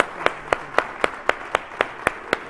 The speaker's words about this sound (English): Yeah, clap your hands.